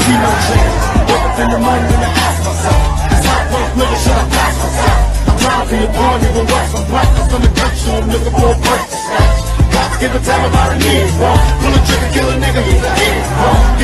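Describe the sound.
A large crowd raps along in unison to a loud hip hop track, many voices blending over a steady, thumping bass beat that runs continuously, with a brief dip near the middle.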